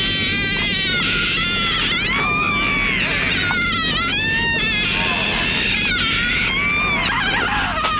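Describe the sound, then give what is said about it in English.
A long, unbroken moaning scream from a woman in a movie fills the whole recording, loud, its pitch wavering and sliding up and down over a dense rumbling background, with no pause for breath. “But this movie wanted to have the longest moan scream that it could ever create in the world, and here it is.”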